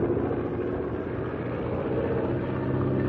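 A small airplane circling to buzz a pack of wolves, its engine droning loudly and steadily throughout, a thick low rumble with a constant buzzing tone and no change in pitch, and no voices.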